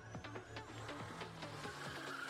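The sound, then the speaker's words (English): Small race cars in a motorsport video game buzz along at a steady engine pitch, with repeated quick swooshes and a rising tire squeal as they drift around. Fairly loud, with no one talking. “Okay, that's always fun, the little cars racing.”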